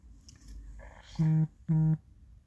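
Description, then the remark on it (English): Two loud, short buzzing pulses from a phone vibrating with a notification, each lasting about a quarter second with a brief gap between them, preceded by faint soft rustling. “Since that notification like vibrated, I'm just gonna take this time to say, that's it, guys.”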